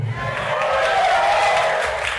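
A large crowd cheers and roars in a steady, dense wash of voices that holds at an even, loud level for about two seconds without pausing.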